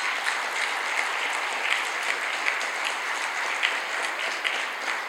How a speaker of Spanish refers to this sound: Dale un aplauso fuerte, Señor.